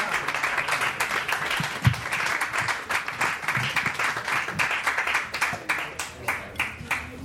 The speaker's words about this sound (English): Guy Branum, ladies and gentlemen, get the clapping starting now. He'll be down in a minute.